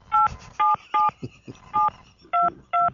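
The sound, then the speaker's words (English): Six short telephone keypad dialing tones beep in quick succession, each a crisp two-pitch chirp, loud, with faint low rumbling noise between presses. “Damn it, this phone system here is just jacked.”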